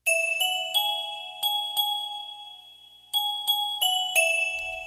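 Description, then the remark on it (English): Clear bell tones ring out in two quick bursts of about five strikes each, every chime bright and sustained, overlapping as they fade, with no voices present. “Bike bells, doorbells, typewriter bells, fire bells, alarm clock bells.”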